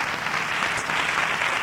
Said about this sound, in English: Now, we're going to give the Lord a hand clap together. Before I let you become seated.